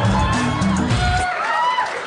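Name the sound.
audience cheering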